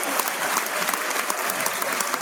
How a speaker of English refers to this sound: Oh, well, wait, dude, audience, we're paying you. Applause break.